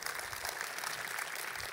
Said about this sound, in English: Your applause was a little subtle, and mine is too, because I'm asking God to double that number next year.